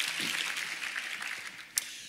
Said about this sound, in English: Round of applause. Thank the band.